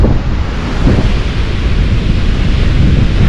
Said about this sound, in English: What else is free? This ocean is free. This ocean right now.